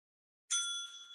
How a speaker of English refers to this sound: I don't know why, but I want the bell so much already.